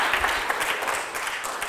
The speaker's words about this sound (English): Now, not everyone claps, and that's okay, but I'm just warning you, things are going to get worse if you don't participate.